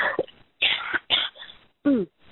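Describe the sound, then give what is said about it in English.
A loud coughing fit: several harsh, abrupt coughs in quick succession, mixed with throat clearing, separated by short silent gaps and ending with a softer, strained clearing sound. “Having a little bit of a coughing fit.”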